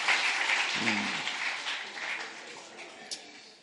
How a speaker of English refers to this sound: Thank you for your clap.